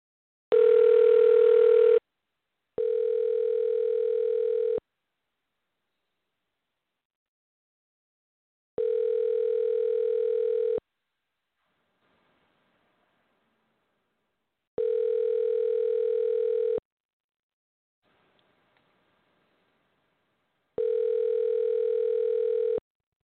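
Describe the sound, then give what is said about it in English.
An outgoing phone call's ringback tone, a steady electronic purr sounding in two-second bursts separated by longer silences, repeating four times after a brief noisy burst at the start. “say what's up with sports and see if he wants to sing a song with me, if he'll answer or call back into the show if he doesn't answer.”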